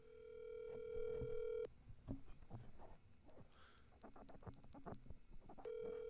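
A phone call rings out over speakerphone, with the phone set on a microphone, a steady buzzing ringback tone sounding for over a second, then a pause filled with faint clicks and room noise before the ring starts again.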